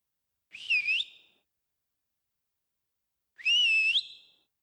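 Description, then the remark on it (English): A person going through the woods whistles a call twice, each a short phrase that swoops down and then levels into a held note, with a few seconds of silence between. Clear, with no talking. “And so I'll never forget, 16 years old, going through the woods and whistling.”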